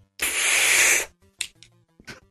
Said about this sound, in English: That should tell you that sound of an inhaler, how long I can hold my breath under the water. Not very long.